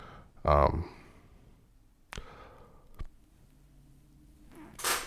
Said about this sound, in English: I sneezed.